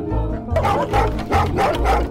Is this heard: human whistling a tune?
no